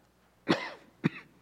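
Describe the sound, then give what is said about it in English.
Two harsh coughs from one person, a longer rough one followed half a second later by a sharper, shorter one, with quiet between them and no talking. “A coughing fit, so I need to quit.”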